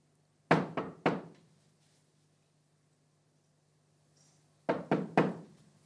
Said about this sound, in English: when I knocked on the piano there, some of you looked up to say, what's that noise?